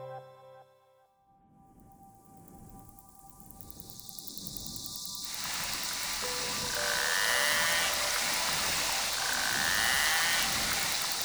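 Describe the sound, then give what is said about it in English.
A dense underwater chorus of narwhal clicks and buzzing, with occasional high whistles sweeping through, building from quiet to a steady, loud wash of sound with no voices. “That underwater cacophony of high-pitched whistles, clicks, and buzzing sounds come from a rather enigmatic but iconic creature. Narwhals.”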